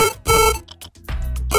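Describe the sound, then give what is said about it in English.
A telephone ringing sound effect: loud, bright electronic rings in short repeated bursts with brief gaps, rich in harmonics, with no voices over it. “Give us some kind of phone thing.”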